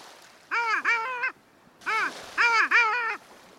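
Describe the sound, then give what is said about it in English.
Loud, nasal calls of long-tailed ducks, a small cluster of sea ducks about 100 yards out on a bay where the water deepens, on a clear, quiet winter morning, ring out in two bursts, each of two or three yodeling, upward-bending notes, clear over a quiet background with no talking. “The silence is broken by a series of loud, insistent calls.”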